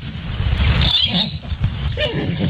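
Faint bird chirps come through in the background, a few brief high calls half-buried under a steady low rumble of noise.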